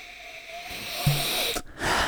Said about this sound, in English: The big sniff hasn't helped me very much.